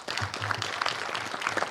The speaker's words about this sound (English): Let's have a round of applause for our panel.